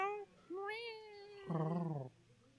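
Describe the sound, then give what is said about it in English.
A cat meows three times in quick succession, the last call louder and lower, with nobody talking over it. “If you guys don't mind a cat just running around everywhere.”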